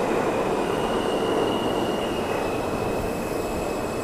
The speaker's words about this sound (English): I'm waiting for the M train. I think it's pulling in right now, which is great.